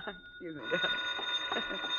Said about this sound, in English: Yeah, well, you better answer the phone.